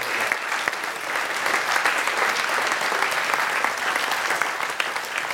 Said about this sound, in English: Oh, let's clap the grace of God over them.